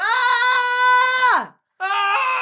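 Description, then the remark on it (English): A loud, sustained human scream holds steady for over a second before sliding down in pitch, followed after a brief silence by a second shorter scream, unaccompanied. “Let's all just try one more human scream for the people at home.”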